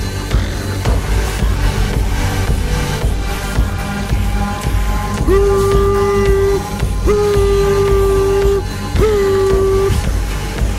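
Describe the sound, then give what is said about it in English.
A train pulls out of a station with a steady, heavy rumble, then sounds three long, loud horn blasts in a row, with short gaps between them. “take us out of the station!”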